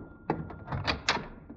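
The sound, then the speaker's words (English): A door opens with a quick series of latch clicks and soft wooden knocks as someone answers the door to a visitor, fairly quiet against a faint steady hum, with no one speaking. “I'll see who's at the door.”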